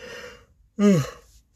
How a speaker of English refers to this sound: and I'm yawning, and if I'm yawning, it means that if it's Thursday, well, give that, actually, no. Scratch that. If it's Friday, it means I just got off a shift from work.